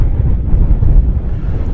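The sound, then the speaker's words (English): Loud, rumbling gusts of strong wind buffet a microphone outdoors on a sunny day that is not cold, a heavy, continuous low roar that surges and dips slightly without pause. No voices are heard. “Unfortunately, it's very windy, which is awful weather to have to work in.”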